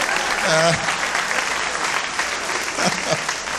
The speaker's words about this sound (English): Yeah, clap again.